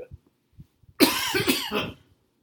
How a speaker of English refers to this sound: I'm coughing, but I don't have coronavirus.